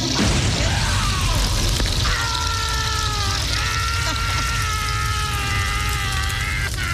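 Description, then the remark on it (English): A loud, steady roaring blast, like the fiery explosion of a toilet bursting into flames, rushes on without letup; about two seconds in, a wavering high-pitched tonal wail rises over it and holds to the end. “This thing is, this toilet's engulfed. That's engulfed scary. In flames.”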